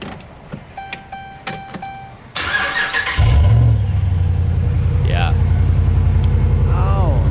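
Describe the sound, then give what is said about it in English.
A few soft warning chimes ding in a regular pattern, then a Ram pickup truck's starter whirs briefly and its V8 Hemi engine catches, settling into a loud, steady, deep idle. “Truck has multiple engines in it, so let's see what the engine”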